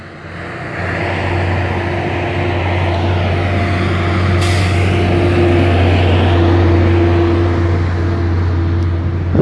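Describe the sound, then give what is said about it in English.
A large truck rumbles by, its deep engine drone steady and loud for several seconds, with a brief hiss of air brakes partway through and no talking. “I'm trying to let this fucking truck go by.”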